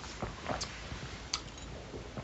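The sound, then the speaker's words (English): Quiet wet slurps and mouth smacks come in a few short, irregular bursts over soft background hiss as people sip beer, with no talking. “We've gone quiet now because we're just slurping it.”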